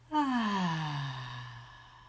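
A single long, voiced sighing exhale that starts higher and glides steadily down in pitch, fading gradually over about two seconds, with no talking.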